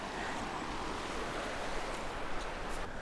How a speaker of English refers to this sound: There's the little song of the Usk, just in full spate.